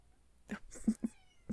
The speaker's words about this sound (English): opened the door to my bedroom and just heard my cat cry, meow at him.